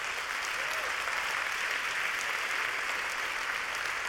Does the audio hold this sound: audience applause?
yes